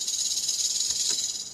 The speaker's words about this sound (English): A rattlesnake.